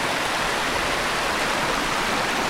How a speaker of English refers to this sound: The river is fairly shallow with a lot of rock outcroppings that create a picturesque scene of water tumbling over rocks that are covered in vibrant green moss. There are two named falls along the river, both around 6 feet tall.